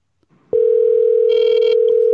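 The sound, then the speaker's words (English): An outgoing voice call's ringing tone starts after a brief quiet moment, a loud, steady electronic hum that holds unbroken to the end, with a faint burst of background noise partway through. “Let's just try voice calling her. If she just doesn't pick up, that's okay. Okay. It's ringing.”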